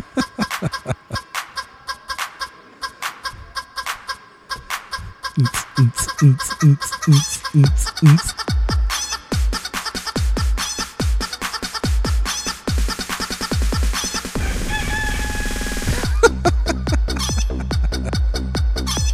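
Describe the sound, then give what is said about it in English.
Chicken clucks chopped into a rhythmic pattern over a thumping hip-hop beat. The loud, steady groove builds as it goes, with a brief crow-like squawk near the end and no talking. “Hip-hop chicken.”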